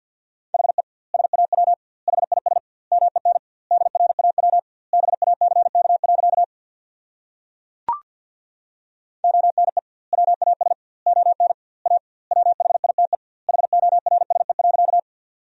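Rapid Morse code at about 50 words per minute sending sentences built from the top 300 words: a steady mid-pitched tone keyed into quick dots and dashes, grouped into words with doubled word spacing, pausing briefly around a single click.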